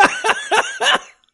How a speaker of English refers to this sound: we hear little brother … in the background coughing like he just got out of the goddamn coal mines in 1844